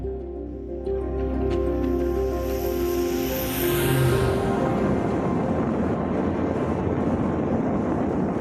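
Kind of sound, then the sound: vehicle, small propeller plane flying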